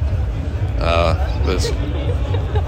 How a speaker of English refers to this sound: I'm running a bit late for the footy, but I'm here. There's a big crowd.